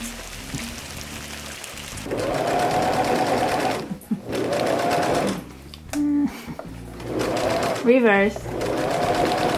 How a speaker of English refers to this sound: I just wanted to kind of put the idea in your head to go pull out that sewing machine and fix your pants.